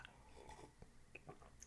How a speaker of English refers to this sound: So I'm taking a sip of coffee right now.